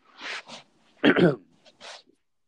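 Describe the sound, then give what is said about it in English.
A single sneeze: a hissy breath in, then a loud voiced burst, followed by a few softer breathy puffs. No one speaks. “Bless you.”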